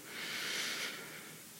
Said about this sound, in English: We're just going to really focus on breathing in. And when we're breathing out, know that we're breathing out. Let's breathe in and know that we're breathing in for 3.